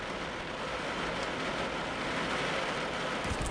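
Steady rain patters on an old parked PT Cruiser, heard from inside the car, a dense, even hiss of drops with no pauses and no voices, holding at a fairly constant, moderate level throughout.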